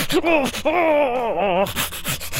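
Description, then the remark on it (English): A cybernetic dwarf hyperventilates on the blood-stained floor of his chop shop: ragged, harsh gasps for air bracket a drawn-out, wavering groan, then quick breathy pants follow, fairly loud with no clear words. “A cybernetic dwarf hyperventilates on the blood-stained floor of his chop shop. He gasps for air and mumbles to himself.”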